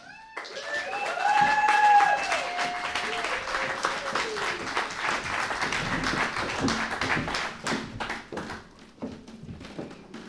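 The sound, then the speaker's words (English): Live audience applause welcoming the second act, the Diarist: a dense rush of many hands clapping that swells loudly early on and then keeps going steadily, with cheers and whoops rising above it at the start. “And with that applause, please welcome, for our stylish and seductive second act, we bring you the Diarist.”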